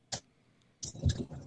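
A few irregular keystrokes clack on a computer keyboard, fairly soft: one isolated tap, a pause, then a quick cluster of clicks, with no one speaking.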